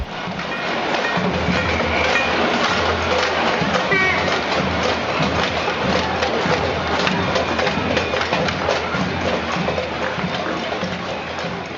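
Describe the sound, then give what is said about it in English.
Protesters at a cacerolazo, a pots-and-pans demonstration in Argentina in November 2012, bang empty cooking pots with spoons and other cooking implements: a steady, dense clatter of many overlapping sharp strikes ringing out continuously over a loud murmur of voices. “People are banging empty cooking pots with spoons and other cooking implements.”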